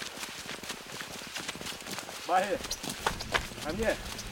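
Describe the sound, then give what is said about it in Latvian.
Quick, steady footsteps crunch over rough ground as someone crosses an open field on the way to a forward post near Donetsk airport, Ukraine, fairly loud, with brief voices rising over them in the second half. “Izejot atklātā laukā ceļā uz priekšposteni, solis mazliet jāpieliek.”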